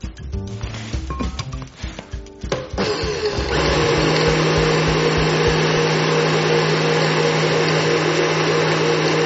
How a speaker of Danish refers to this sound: Nu blender vi asken helt fint, og så er det klar til brug. Nu er asken blendet.